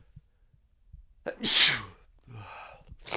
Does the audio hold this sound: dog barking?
no